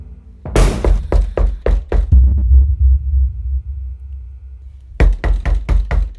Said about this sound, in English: I jumped out of my skin. More pounding at the door.